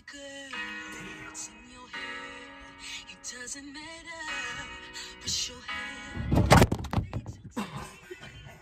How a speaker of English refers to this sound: He just knocked everything over. My bad.